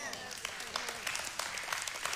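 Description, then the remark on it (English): A church audience claps steadily during a sermon for a couple of seconds, a dense, even patter of many hands at moderate loudness, with faint voices murmuring underneath. “You ought to clap right there.”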